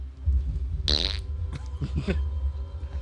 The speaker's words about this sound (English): Here's my jar of farts.